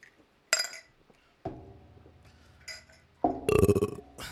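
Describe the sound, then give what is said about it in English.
A shot glass drops into a beer glass to make a depth charge drink, with a sharp glassy clink, followed by sloshing liquid and a second, louder rattle of glass on glass. No one speaks. “Are we doing the drop in? Yeah, like a depth charge.”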